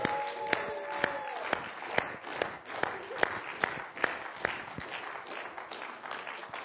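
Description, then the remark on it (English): An audience claps in a steady, rhythmic beat, roughly two claps a second, over a constant wash of crowd noise and cheering, with a brief high-pitched tone near the start. “Now we can cheer.”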